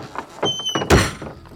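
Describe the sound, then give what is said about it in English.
A wooden outhouse door is pulled and rattles: a short creak, then a heavy thunk as it jams against its frame and won't budge. Loud and brief, with no voices. “The outhouse door won't open.”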